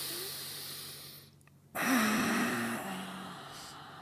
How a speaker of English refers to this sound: we're going to take a breath in through the nose